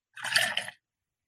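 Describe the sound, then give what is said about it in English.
A quick, forceful pour of hazy beer into a water glass: a single rushing, splashy burst of liquid lasting about half a second, then silence, with no voices. “So I just, for those who can't see it, I aggressively poured this shit, and it does have some minor, but look at that.”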